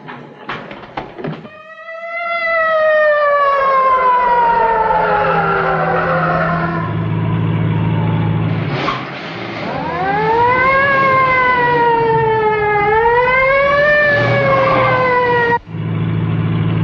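A loud siren wails continuously from an ambulance being followed in a chase, its pitch sweeping slowly down then rising again in long cycles, with a low engine rumble underneath and no voices.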